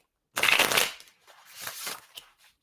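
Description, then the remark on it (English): A tarot card deck being shuffled for a reading: one loud, dense riffle burst, then a softer stretch of cards sliding and tapping back together, with no voices. “Get these one more good shuffle. I just always try and shuffle till it feels right, which is really hard to describe.”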